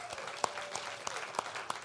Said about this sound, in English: And let's give them a hand clap as well.